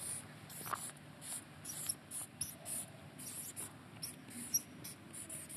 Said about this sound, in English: Oh, pen's running out a bit and getting a bit squeaky. I think that happens to all teachers.